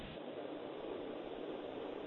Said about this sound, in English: I've got a ceiling fan on. Let's turn that off. Hang on. I don't think you can hear that, can you? I can hardly hear it. What is it you've got turned on? A ceiling fan. Keeping it cool.